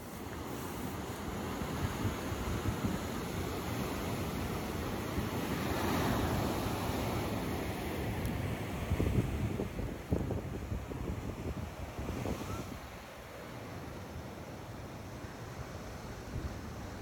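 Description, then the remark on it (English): Steady ocean surf rolls and breaks, a broad continuous wash of water with swelling surges, mixed with gusty wind buffeting the microphone; no voices. “So enjoy this 20-second visual of the ocean with me, and then I'll show you or tell you what happened here.”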